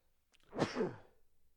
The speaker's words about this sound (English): Bless you.